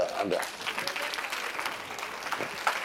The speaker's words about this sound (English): I'm done. Clap your hands.